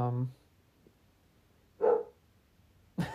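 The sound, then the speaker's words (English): A dog, Simba, barks in a few short, sharp bursts spaced out over a quiet background, with a brief voice-like sound at the very start. “I know, you see Simba barking in the background.”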